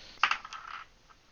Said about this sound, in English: Listen to those dice roll. Yeah, just clatter, clatter, clatter, clatter. It is 8d6 fire damage.